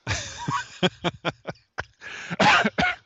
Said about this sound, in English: Gotta mute. He's coughing.